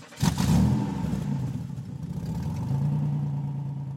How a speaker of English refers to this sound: Drive to work.